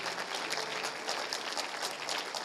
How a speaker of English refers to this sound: In the name of Jesus, give him a hand clap. Praise God.